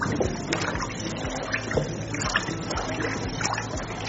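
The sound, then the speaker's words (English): Nitrosone fertilizer is poured into a bowl holding 10 liters of water while being stirred, making a steady run of soft splashes and sloshing that continues for several seconds at a moderate level. “So you pour your nitrosone.”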